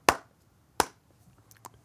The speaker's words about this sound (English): I'll give you the Russo clap on that one.